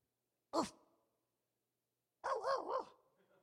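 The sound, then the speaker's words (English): A female dog, taught by her owner to bark, gives one short, sharp bark, then after a pause lets out a longer, wavering bark-howl that rises and falls a few times, with no talking. “So anyway, I taught my dog how to bark.”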